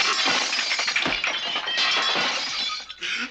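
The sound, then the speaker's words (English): A woman smashes out a window: glass shatters loudly, a bright crash followed by a continuous spray of tinkling, falling shards that keeps going for a few seconds with no voices. “And then she smashes out a window.”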